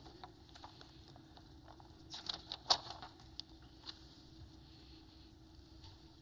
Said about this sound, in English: Father, as I hear pages turning, I'm praying in the name of Jesus over today in this service.